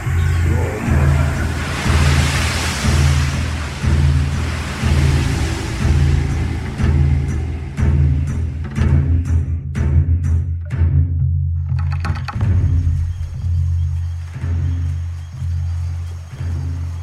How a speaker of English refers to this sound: Look, Conan, as the oars dip into the shining water.